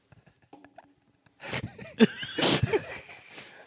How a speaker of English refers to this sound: For the folks at home, he just fucking blew snot all over the set by sneezing. Sorry, I have COVID.